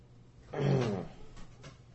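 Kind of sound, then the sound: animal, large dog barking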